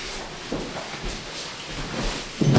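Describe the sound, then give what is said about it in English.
A treatment table is turned around: scraping, shifting noises with a few soft bumps, ending in a louder knock as it settles, with no talking. “Let's just turn the table like this.”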